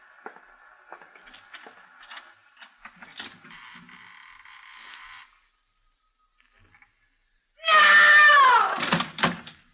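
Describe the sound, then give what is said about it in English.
Rattling, clicking mechanical noise gives way to a pause, then a loud, high-pitched creak that squeals downward, followed by a couple of heavy knocks as a door swings open. “Shall we open the door?”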